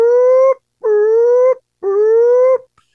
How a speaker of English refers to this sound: Motorcade. You see a convoy of vehicles leaving the base, right? And that familiar siren that the characters would have heard, remember the first night at the theater? When the dogs got loose.